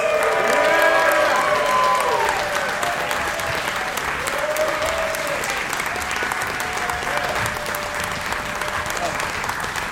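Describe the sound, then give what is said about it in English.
A crowd in Austin, Texas bursts into sustained, dense applause with some cheering and whoops as comedians Tone Bell, John Erler, Mary Santora and Chris Tellez are welcomed, loudest in the first couple of seconds, then continuing steadily at a slightly lower level with faint voices mixed in. “Give it up, everybody, for Tone Bell, John Erler, Mary Santora, and Chris Tellez.”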